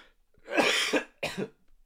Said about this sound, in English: I got a cough.